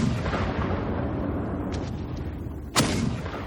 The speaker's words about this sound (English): Dawn becomes bright as midday for an instant, before it is swallowed by black smoke. In the words of one who was there, it is as if the jaws of hell have opened. Peaceful fields are torn apart by exploding bombs and shells.